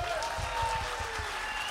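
audience applause

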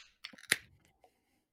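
beer can cracked open

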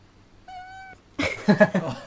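cat crying

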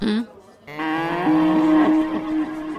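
cow mooing

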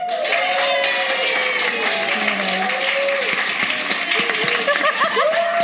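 hand clapping

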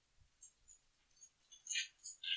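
dice being rolled

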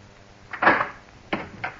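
door being opened

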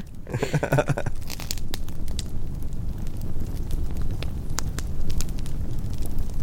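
campfire crackling

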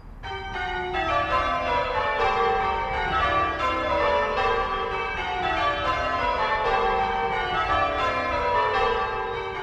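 church bells ringing

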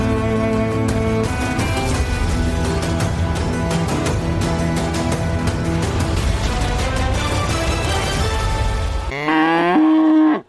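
cow mooing

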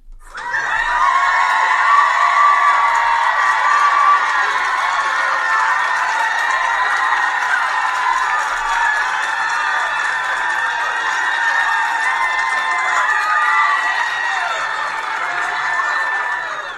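crowd cheering and whooping

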